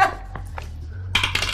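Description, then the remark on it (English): Dice tumble onto a hard tabletop for an odds-or-evens roll: a couple of light clicks, then a brief, bright clatter of rolling and settling, with no talking; the roll comes up even. “In that case, give me an odds or evens roll. Call it, roll it, and see if you get it right.”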